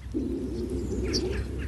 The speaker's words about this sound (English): The birds singing in the background, tweeting away.